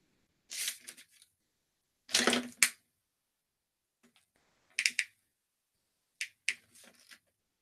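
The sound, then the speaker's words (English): Crinkly rustling and crisp shuffling in several short bursts separated by pauses, fairly loud, like sheets of paper being picked up and moved around, with no voices. “Hold on, let me get this paper.”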